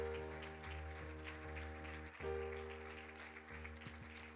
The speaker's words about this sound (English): Let's give the Lord some praise today. Come on, if you haven't clapped this far, this is your moment.